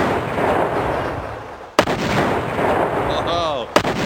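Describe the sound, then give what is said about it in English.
A T-shirt cannon fires twice, launching slightly deflated size-large T-shirts into a crowd, each shot a sharp, loud pneumatic bang about two seconds apart, over a constant wash of loud background roar. “Just going to fire them into the crowd like it's a Patriots game. With the T-shirt cannon that yeah, we brought?”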